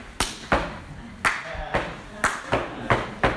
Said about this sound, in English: There used to be a stomp that I used to hear at campus conferences. You guys know about the stomp? Oh, yeah. The stomp's like...